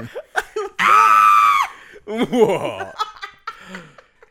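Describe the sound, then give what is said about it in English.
A person imitates a goat's scream with a loud, strained bleat held for about a second, followed by a shorter wavering cry and a few breathy, laugh-like vocal bursts. “I was trying to do Donald Duck. Goat scream.”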